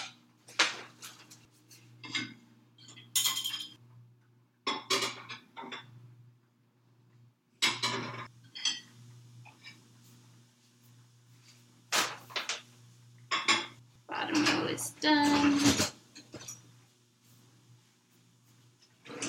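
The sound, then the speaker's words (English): Dishes clatter and clink in a series of sharp, irregular bursts, with running-water swishes and a low steady hum underneath, as plates and utensils are washed and set down while mac and cheese is being made. “dishes while you're making mac and cheese is it doesn't feel like you're doing dishes”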